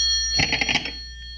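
An old-fashioned telephone bell rings in one short, rapid burst of clattering strikes lasting about half a second, loud, over a steady faint background hum.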